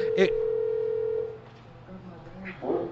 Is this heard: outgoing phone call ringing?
yes